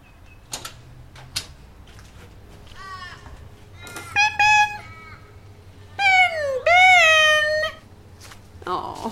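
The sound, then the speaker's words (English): A pet bird lets out two loud, drawn-out squawking calls, preceded by a few softer chirps and sharp clicking taps against a low background hum. “I mean, who calls their pet bird after an Indian poet, for fuck's sake?”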